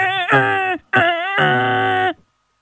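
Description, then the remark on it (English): A voice imitates a car horn, demonstrating a favourite go-to toot, with two loud, sustained nasal toots, a shorter one then a longer elongated blast, strongly harmonic and steady in pitch, followed by silence. “Extra points if you're in the car right now and you can perform your favourite toot.”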